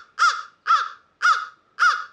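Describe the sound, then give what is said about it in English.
A voice imitates a crow with four loud, harsh caws in a steady, evenly spaced rhythm to give a bird a rating on a crow scale, with nothing else in the background. “You know, I wonder, like, I mean, people know that we make the chirping sounds correspond to our rating, right?”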